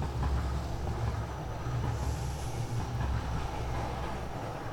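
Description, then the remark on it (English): A train rumbles past, one of many going by every minute, its deep, steady roar filling the low end with a faint rhythmic clatter of wheels on the track. The sound holds at a constant loudness, with no voices. “You know, there's never a fucking train when you need one, and when you're trying to record a goddamn podcast, they're going by every minute.”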